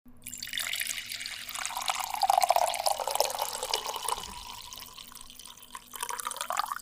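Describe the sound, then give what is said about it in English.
Coffee is poured steadily into a cup, a continuous splashing stream whose pitch rises as the vessel fills, with a brief surge near the end; no voices. “I sat here and listened to 6 takes of coffee pours.”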